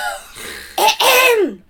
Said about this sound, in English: No, I was clearing my throat because no.